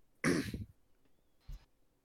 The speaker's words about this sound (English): I'll cough with my hand out.